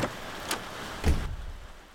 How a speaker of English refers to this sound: Still raining out, I see.